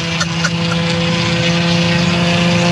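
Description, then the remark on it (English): A Nissan Altima engine with a bad muffler gives off a loud, steady, raspy drone with a low humming buzz that holds constant for the whole stretch, with no voices. “Is that his muffler? You got a bad muffler? Sounds like a dead duck, doesn't it?”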